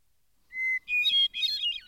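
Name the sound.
hermit thrush song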